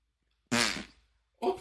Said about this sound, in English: Please, sir, can I have more of these fart balls? They're going to make me fart really hard.